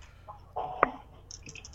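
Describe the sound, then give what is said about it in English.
Percentile dice land on a table with one sharp clack, followed by a few faint, light rattles as they settle in otherwise quiet surroundings. “I will roll a percentile too.”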